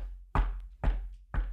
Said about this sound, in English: two young boys in hoodies, aged 9 and 12 by Brian's estimate, knocked on his driver's side window